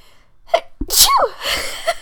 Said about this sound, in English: Oh my gosh, I feel like I have to sneeze. Here it comes.